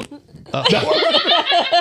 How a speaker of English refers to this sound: do you have a fart noise on there? I can make one.